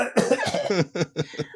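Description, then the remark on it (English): A raspy coughing fit from someone straining to do a denasal, nose-plugged voice: one long rough hack followed by three shorter, sharp coughs in quick succession, with no talking around them. “And it was actually difficult to do that voice as well. Like, I would start coughing.”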